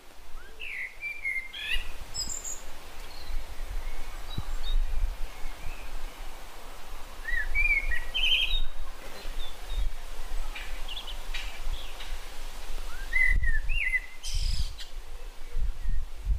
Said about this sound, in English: So there's a blackbird singing in the tree just up ahead. I'm going to try and get a bit closer and see if I can still record him without him flying off.